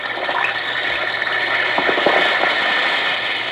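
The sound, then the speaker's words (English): An Alka-Seltzer tablet fizzes in water, a steady, bright hiss of tiny bubbles with faint crackles that holds at an even loudness throughout, with no voices. “Listen to it fizz.”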